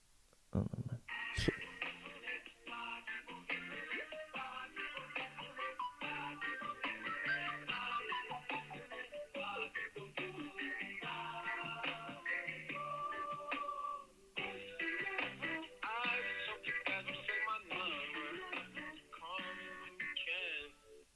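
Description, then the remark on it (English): Tinny, band-limited music snippet plays through a telephone hotline for about twenty seconds, a steady melodic stream with layered harmonic tones and a brief pause partway through, after a sharp click at the start. “That's the snippet on the phone.”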